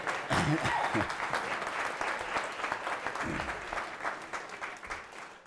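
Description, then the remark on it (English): An audience applauds the 90-year-old Mr. Bunny at Easter, clapping steadily for several seconds in a dense wash, with a few voices briefly rising underneath, fading slightly toward the end. “Bunny, after 90 years of gracing the DeWetter household with Easter's, deserves a round of applause, don't you?”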